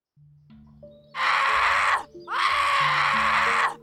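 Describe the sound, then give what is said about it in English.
Two loud, harsh screams from a person waking up as someone shakes their shoulder, one short and a second longer one right after a brief gasp-like pause, rising out of a quiet low droning background. “I awoke screaming as I felt someone shaking my shoulder.”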